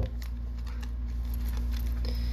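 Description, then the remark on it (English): Tarot cards being shuffled, a soft papery rustle and a few quick flicks over a steady low hum, with no voices. “So this is gonna be the final time I mix up these cards, because they're just so dang hard to shuffle.”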